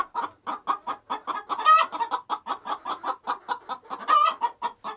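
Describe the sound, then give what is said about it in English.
Hens cluck in a rapid, steady stream of rhythmic pulses, broken twice by a brief, louder, higher-pitched rooster call rising above the flock. No one speaks. “Too many roosters in the White House. Cocks crow, feathers are fluff.”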